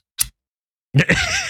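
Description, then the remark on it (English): A scissors-cutting sound effect: a single sharp, crisp snip of scissors cutting, then after a short pause a louder, drawn-out sound with a wavering tonal whine. “And then I cut them with scissors.”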